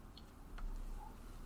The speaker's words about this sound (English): Roll your dice. I will roll my dice.